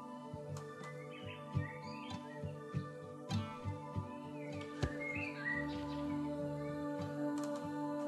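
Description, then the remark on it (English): Soft bird chirps and twitters drift over a calm musical track with steady plucked notes, the birdsong light and scattered, sitting above the music rather than dominating it. “I love that there's birds on this song.”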